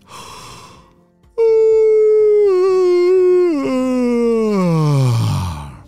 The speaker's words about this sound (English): That was the yawn of a spring peeper. And this one's name is Paulio. Have you ever heard of a spring peeper before? Well, you might have heard them before. They're very loud little tree frogs. Very small frogs, about the size as your thumbnail.